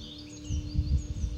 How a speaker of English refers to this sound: Outside the birds sing. A magpie chatters. A bit late into the night.